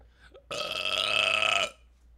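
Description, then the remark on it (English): A single loud, drawn-out burp lasting over a second, with a rough, croaky rumble and no talking around it. “I burped, dude.”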